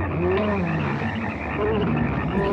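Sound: frogs croaking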